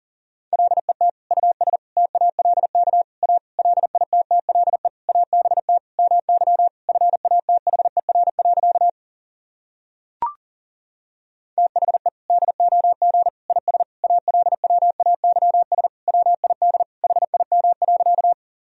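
Fast Morse code at 40 words per minute, sending practice sentences from the top 400 words and abbreviations: a steady mid-pitched tone keyed in rapid dots and dashes, two long runs split by a pause with a single sharp click between them.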